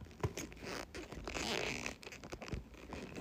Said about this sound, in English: The zipper doesn't work properly. Like, it sucks.